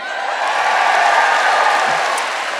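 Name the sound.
audience applauding and cheering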